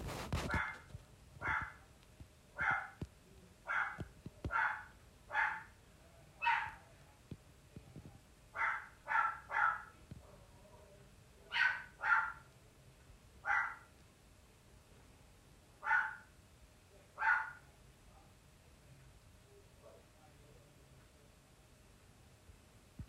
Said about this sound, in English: Might even take inspiration from the barking dog, who is being very diligent about protecting herself.